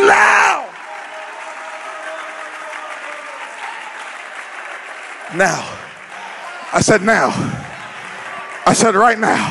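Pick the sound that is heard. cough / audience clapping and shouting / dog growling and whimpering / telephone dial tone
audience clapping and shouting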